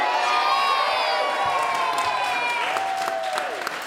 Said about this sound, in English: He ate the rest of the watermelon. He went wild. The crowd cheered.